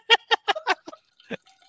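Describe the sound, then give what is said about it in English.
A quick run of short, sharp fizzing bursts from a soda maker carbonating water to make sparkling water, about five in a row, then a pause and one last burst, fairly loud. “it's not pee. I'm making sparkling water.”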